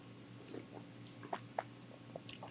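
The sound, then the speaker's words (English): A few short, wet sips of a sidecar cocktail from a cocktail glass, spaced irregularly over a faint steady hum, with no talking. “Let's take some sips.”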